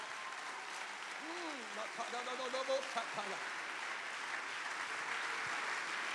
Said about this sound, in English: Oh, I wish you would clap your hands like you believe you're called.